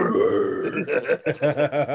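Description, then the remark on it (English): A man imitates the death metal scream from a WWE promo by wrestler Jerry Lynn: a sustained, gravelly growl, then a dip and a series of rhythmic guttural barks. Loud and harsh, with no other talk over it. “Jerry Lynn should be just forgetting a fucking death metal scream in WWE.”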